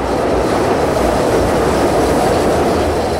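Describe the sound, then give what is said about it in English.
A loud Chicago CTA 'L' elevated train roars past on the tracks, a dense, steady rumble of wheels and rail noise filling the whole moment, with no voices. “What it's like to live next to the CTA's L train tracks.”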